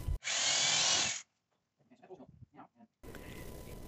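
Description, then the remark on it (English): A power drill whines loudly for about a second as it bores small holes through a plastic condensation tray and an aluminum frame of an air conditioning unit, followed by quieter scattered noises and a steady hiss. “Using duct tape to hold it in place only temporarily, he'll drill small holes through the plastic tray and through the aluminum frame.”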